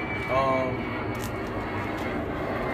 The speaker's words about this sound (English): I'll let this plane go by real quick.